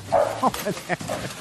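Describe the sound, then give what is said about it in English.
A dog tears into the mail, including an electric bill, letting out a quick run of four or five sharp, excited barks and yips, one right after another in an uneven, agitated rhythm. “Yeah, the dog took care of the electric bill. Not a problem here. Going crazy with the mail.”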